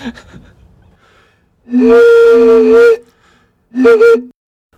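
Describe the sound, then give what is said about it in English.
A voice imitates a steam locomotive whistle: a long, loud, harmonic hoot of about a second, a pause, then a shorter second blast, after faint breathy puffs at the start. “This is a steam locomotive impression.”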